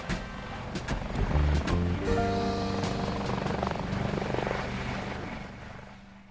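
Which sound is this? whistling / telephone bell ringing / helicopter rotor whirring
helicopter rotor whirring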